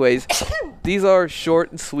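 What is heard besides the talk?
sneeze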